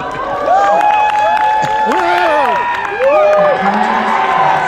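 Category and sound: crowd, audience cheering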